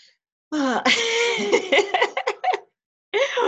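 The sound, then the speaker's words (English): A drawn-out vocal yawn with a gliding, wavering pitch that breaks into several short breathy bursts, followed after a pause by another brief exhale. No one talks. “There's that lovely little yawning. I love your yawning.”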